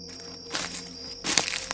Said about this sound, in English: I heard another footstep, this time much closer. It was clear someone or something was sneaking around our campsite.